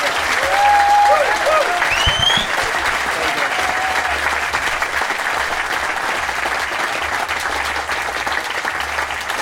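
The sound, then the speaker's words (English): Sustained audience applause for the poet laureate Simon Armitage, a dense steady patter of many hands clapping at an even loudness throughout, with a few brief whoops or cheers rising above it early on. “He's going to stay, but ladies and gentlemen, please round of applause for Simon Armitage.”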